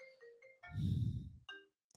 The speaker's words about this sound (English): I just got a phone call. That's embarrassing. Right in the middle of my recording